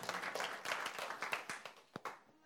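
Brief, scattered audience clapping, with many irregular sharp claps overlapping at first, then thinning to a few isolated claps before fading out. No one speaks.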